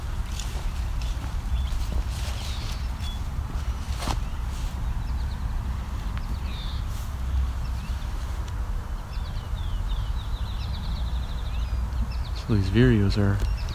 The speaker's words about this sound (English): I hear a cowbird as well. Don't know where it is though. It's a brown-headed cowbird. Somewhat high-pitched bird. I don't see where it is though.